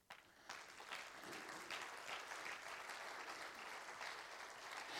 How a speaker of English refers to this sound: Hallelujah. Could we just clap our hands to Him?